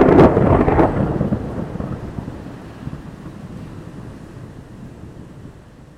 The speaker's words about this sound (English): And as you bring your blade down, you hear a deafening thunder.